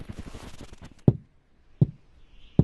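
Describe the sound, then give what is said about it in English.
Three solid, hollow, firm knocks on the wooden door of a house, evenly spaced, following a brief patter of lighter sounds like approaching footsteps. “knocks firmly on the wooden door 3 times”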